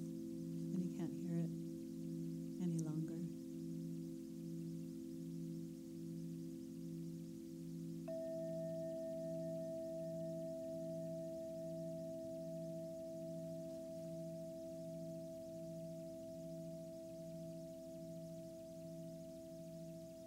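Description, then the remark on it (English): A meditation bell rings to signal the end of a meditation, with long, steady humming tones. A second, higher tone joins partway through, and the ringing carries on for many seconds with only slight fading. “And soon you'll hear a bell to signal the end of the meditation.”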